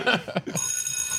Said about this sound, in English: Did we hit the bell?